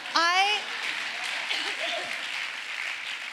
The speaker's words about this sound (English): I mean, yes, clap for me,